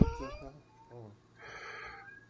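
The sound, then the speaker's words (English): A cat screams in a couple of drawn-out, wailing cries, fairly loud, with a short pause between them. “What's the matter, cat? Don't start screaming.”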